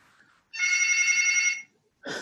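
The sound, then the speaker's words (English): A hotel room telephone rings with a steady electronic trill, one full ring of about a second followed by the start of a second ring, fairly loud, with no talking. “Okay, I've got the hotel phone going off in the background.”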